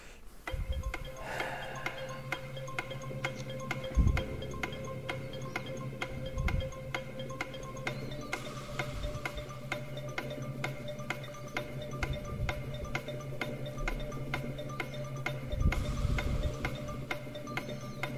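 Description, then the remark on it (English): A clock ticks steadily, roughly twice per second, crisp and evenly spaced over a low, sustained tense musical drone, timing a word puzzle. No one speaks. “Start the clock.”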